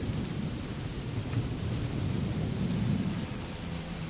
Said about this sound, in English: There we go. It's very, very wet and windy out there.